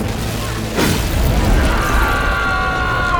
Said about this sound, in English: Without warning, an explosion rips through the room, leveling the complex.